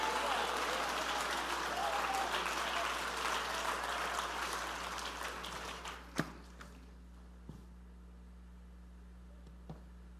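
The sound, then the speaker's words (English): A crowd claps loudly and steadily for about six seconds, a dense wash of many hands, as a preacher urges listeners to jump to their feet and clap, declaring today Independence Day; then the applause stops abruptly, leaving a few scattered claps and a quiet hum. “Come on, jump to your feet and clap your hands and say, today is Independence Day.”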